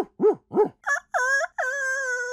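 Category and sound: bird, rooster crowing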